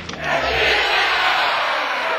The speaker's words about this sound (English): Oh, golly. I love the cheering. You know what the best part of the cheering is? Is that it's, you know, it's like the end of June.